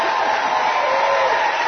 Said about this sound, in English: The crowd is standing up, applauding, waving fans. Maybe a while before we can hear her speak. The crowd is still applauding.